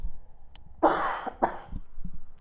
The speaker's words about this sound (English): Another cough.